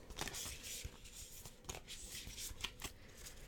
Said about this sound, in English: Giving the cards a shuffle.